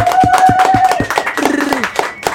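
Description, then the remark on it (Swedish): Brisk, steady hand clapping, roughly four or five sharp claps per second, with a sustained hum and a short voiced sound riding over the claps partway through; applause congratulating a Grammy win. “Det krävs en applåd.”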